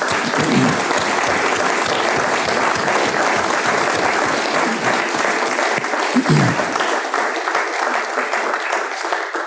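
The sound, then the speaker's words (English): The men of an audience burst into sustained applause for the women in their lives, dense clapping from many hands filling the space steadily for several seconds, with a few faint voices and cheers mixed in beneath it. “You're all so, men in the room, in the congregation, men only, give all of the women in your lives a round of applause, please.”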